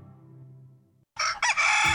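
A rooster crows loudly, a bright, strained cock-a-doodle-doo that bursts in after a brief silence following a low hum.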